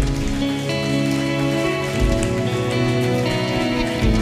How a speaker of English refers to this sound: Come on, clap right there and shout amen.